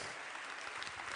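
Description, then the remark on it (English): An audience at a church worship service clapping together as a clap offering of praise, a dense, steady wash of many hands applauding with no pauses, loud and sustained throughout. “Come on, give him a clap offering.”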